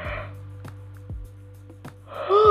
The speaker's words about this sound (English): I just keep yawning. It's ridiculous.